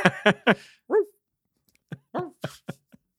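A dog makes a series of short, whiny yips and barks, three quick ones, then a drawn-out whimper, and after a brief pause another scattered burst of yelps, clear.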